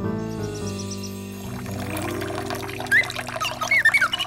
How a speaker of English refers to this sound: I can pour some water from my water bottle.